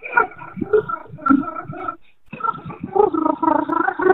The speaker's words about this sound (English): And so now we want to have you try to sing a song while rolling R's.